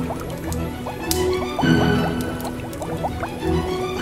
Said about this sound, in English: He slid down the chimney into boiling hot bubbles.